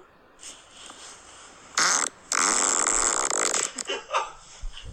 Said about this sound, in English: All right, let's keep going through these farts.